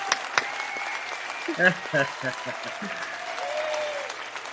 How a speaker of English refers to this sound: Well, goddamn, are they going to shut the fuck up? They clapping like a motherfucker.